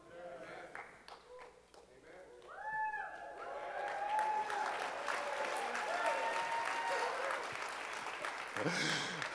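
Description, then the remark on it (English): An audience breaks into applause that swells after a couple of seconds into steady, loud clapping, with a few cheers and whoops rising above it before it tapers near the end. “If I stay silent, they'll applaud.”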